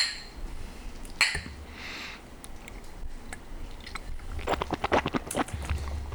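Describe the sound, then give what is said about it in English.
A quick cluster of sharp clinks as several glasses of Fireball are knocked together in a toast, with soft slurping sips and a brief hiss around them; no one speaks. “Let's all take a sip together. And then we're going to give honest reviews. Should we cheers? Cheers, fellas.”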